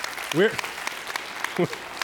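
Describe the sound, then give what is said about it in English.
A church audience claps steadily and densely for a couple of seconds, celebrating news that six people came to faith in Christ, with a couple of brief voiced calls rising over the applause. “We're going all charismatic here and just clap the whole service, aren't we?”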